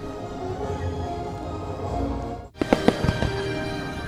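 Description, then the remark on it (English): A steady rumbling crowd-like roar of fireworks in the rain, then after a brief dip several sharp, loud bangs crack in quick irregular succession, punchy. “I just saw the fireworks.”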